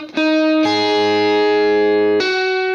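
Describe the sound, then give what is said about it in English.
A loud, distorted electric guitar sustains a picked note, then bends at the 7th fret of the G string up to the pitch of the 5th fret of the B string, with notes barred at the 5th fret of the B and E strings, then releases, all in one picking motion, with no one talking. “So we're bending at the 7th fret on the G string, going up to the 5th fret of the B string. We're going to bar these notes at the 5th fret of the B and the E string.”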